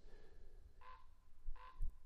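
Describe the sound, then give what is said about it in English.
A crow caws twice, two short harsh calls spaced under a second apart, fairly faint against a low background rumble, with no voices. “Listen, Crow's telling you that. He's laughing at you.”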